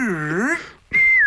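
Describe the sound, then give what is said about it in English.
A loud two-note teasing whistle, made as a man takes his clothes off: a swooping first note that dips and rises, a brief pause, then a clear, high sustained note that slowly slides down. No talking. “Every time I take the clothes off, there's one of those sort of petty whistle sounds”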